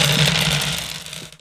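Many dice are rolled for initiative in a game, a dense, rapid rattle of dice tumbling and clattering together, loud, with no voices, tapering off quickly after about a second and a half.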